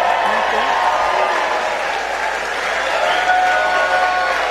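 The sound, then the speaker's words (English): Sustained audience applause fills the whole stretch after the president's line that Nancy Pelosi has been fired, a dense, steady wash of clapping with crowd cheers and whoops mixed in, loud and unbroken throughout. “That may have been the biggest applause line of the night.”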